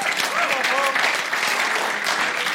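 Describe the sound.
An audience claps for a small group leader invited onto the stage, a steady, dense round of applause, a broad crackling wash that holds level throughout, with faint voices and a few tonal whistles or cheers mixed in.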